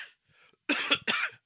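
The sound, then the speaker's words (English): Two harsh coughs in quick succession, fairly loud, from someone who is feeling under the weather, preceded by a faint breathy rasp. No talking, just the abrupt bursts of coughing alone. “So I'm going to be coughing quite a lot, I believe, during this episode.”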